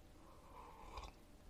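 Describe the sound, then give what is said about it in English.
A quiet sip of water, with faint mouth and swallowing noises and a brief soft slurp near the middle, and no talking. “I'm gonna go ahead, take a sip of water real quick.”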